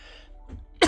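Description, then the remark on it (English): A single sharp cough bursts out at the end, preceded by a soft throaty rumble like a brief throat clearing. “I'm sorry about the coughing.”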